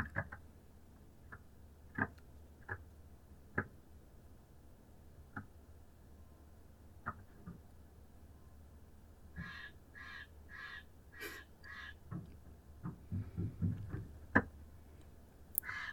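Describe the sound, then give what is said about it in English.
A bird taps sharply and irregularly on an RV while camping in nature, joined midway by a short burst of four or five harsh, crow-like squawks from the bird before the tapping quickens. “There's literally a bird squawking and tapping on the RV right now.”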